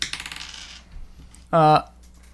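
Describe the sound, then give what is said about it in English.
Dice clatter and tumble across a hard tabletop in a quick rattling burst that fades out, followed after a short pause by a brief, loud tonal sound; at the end of Act 1 of a game, each player rolls the white, red and black dice in front of them. “So now everyone rolls the dice that they have in front of themselves.”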